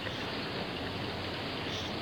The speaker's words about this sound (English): Well, let's just don't stand here in the rain talking about it.